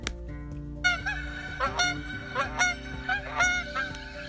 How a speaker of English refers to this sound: He looked at the goose honking outside the window.